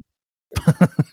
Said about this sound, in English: Look at that. I just cough. I don't care. I'm not going to bend into my elbow and be like, I got it.